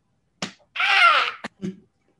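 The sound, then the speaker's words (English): Several sharp slaps of a hand against a leg, spaced irregularly, with a longer hissing, rushing burst of noise between the first and second slaps. “and once again Drew slapping the fucking leg, just slapping the leg.”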